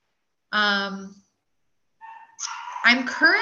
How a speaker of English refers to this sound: There goes my dogs. I don't know if you can hear them.